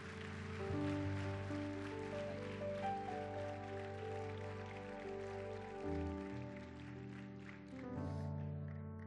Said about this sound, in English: Come on and give Jesus a hand clap in this place.